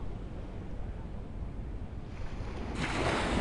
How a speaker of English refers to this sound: That somehow the sound of the sea, the touch of a breeze, brings us so much more into our bodies, into our embodied selves, that we realize how little we have been there up to this point.